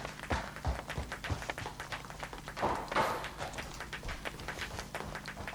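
Quick, irregular tapping and stepping sounds patter along steadily, like shoes striking a hard floor, with faint crackle and low hum underneath, played back from a vinyl record of footsteps and tap dancing. The records once lined the floor of a gallery in Zurich.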